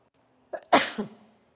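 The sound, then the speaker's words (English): A single forceful sneeze: a quick catch of breath, then an explosive burst that trails off with a short follow-through. No talking. “Whew, I'm going to sneeze.”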